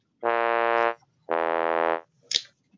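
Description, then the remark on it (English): A wrong-answer sound effect for a missed quiz question: two long, low, buzzy blasts with a raspy, fart-like tone, followed by a short sharp click. Loud and alone, with no talking. “If you get the question wrong, you will hear this.”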